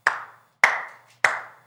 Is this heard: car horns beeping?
no